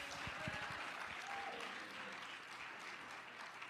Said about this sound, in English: Oh, I wish you would all clap your hands and make a joyful noise unto the Lord.